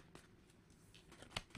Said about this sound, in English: Oh my goodness, this card keeps coming out. I swear I'd be shuffling my cards.